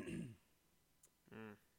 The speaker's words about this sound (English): That's all you got to say? Just a cough? Clear my throat and that's it.